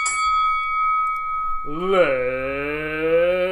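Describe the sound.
A single bright bell strike rings out and sustains clearly for over a second, then a loud voice starts in with a drawn-out, sung-like delivery as the ringing fades underneath.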